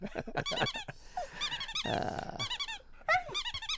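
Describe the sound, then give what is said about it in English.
A squeaky toy squeaks rapidly and repeatedly as Mueller the dog chews it, with a low rumbling growl breaking in midway before the quick, high squeals resume. “Just do that thing. Mm-hmm. Yeah, just squeak it.”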